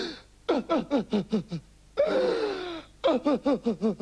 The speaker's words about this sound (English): And you can imagine how she wept when she heard. Well, maybe you can't. Well, it was a bit like this.